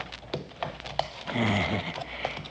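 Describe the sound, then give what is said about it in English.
A horse shifts restlessly, its hooves knocking irregularly while it lets out a low, rough snort partway through. No one speaks. “Easy, horse. Easy.”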